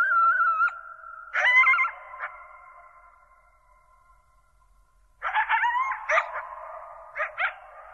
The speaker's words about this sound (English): That's a pack of coyotes, one of Gordon's favorite recordings.